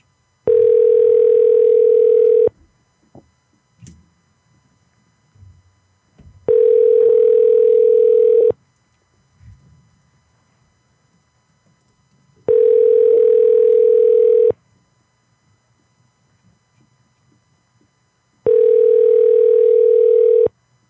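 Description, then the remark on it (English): Ringback tone of an outgoing phone call: four steady, low-pitched buzzing rings, each about two seconds long, repeating every six seconds with quiet pauses between. No one speaks. “Your call has been forwarded to voicemail.”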